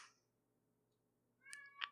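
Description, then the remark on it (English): A cat meows twice in quick succession, short, fairly faint calls that rise near the end after a stretch of quiet background hum, with no talking. “Kitty, settle down.”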